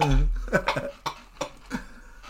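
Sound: coughing fit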